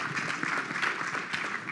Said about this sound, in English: Yes, big applause